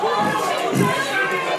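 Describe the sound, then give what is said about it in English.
A rugby league stadium crowd jeering the Wigan players, a dense, steady roar of many voices with no pauses, loud and continuous throughout, with a brief sharper shout near the end. “Yeah, the crowd giving the Wigan players a lot of jip here.”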